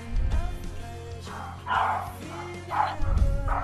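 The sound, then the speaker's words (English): A dog barks in a few sharp bursts spaced irregularly, moderately loud, over a low background rumble with no talking. “What is he barking at?”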